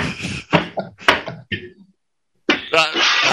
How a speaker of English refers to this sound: Hey, who's putting their dishes away right now?